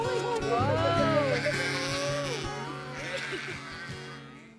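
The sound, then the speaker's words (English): Several sheep bleat in overlapping, wavering cries, fairly loud, responding to a shepherd's voice calling amid them before the flock's noise tapers off toward the end. “The sheep know the shepherd's voice.”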